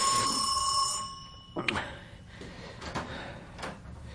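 A front doorbell rings at night with a bright, sustained electric tone for about a second and a half, then cuts off, followed by a few scattered clunks and rustles at moderate volume.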